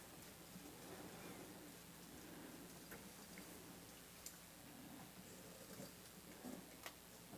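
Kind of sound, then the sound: nature, rain falling outside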